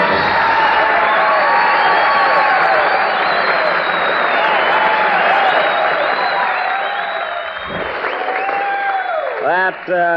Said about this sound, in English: She got more applause than I did.